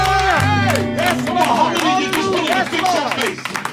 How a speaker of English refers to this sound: Come on, you're free. If you're free, come on and clap your hands.